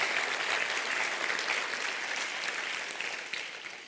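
A crowd applauds steadily at a preacher's call to clap, many hands clapping in a dense, sustained wash of sound that holds for a few seconds and then slowly eases off at the end.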